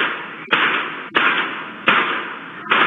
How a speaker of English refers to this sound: Five bangs believed to be gunshots ring out.